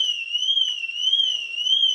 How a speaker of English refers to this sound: Somebody found the alarm. Uh-huh. Is that your Mercedes is going off.